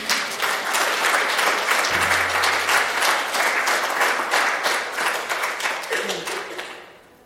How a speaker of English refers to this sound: Can we have just another round of applause for this panel? Thank you. Thank you. Thank you.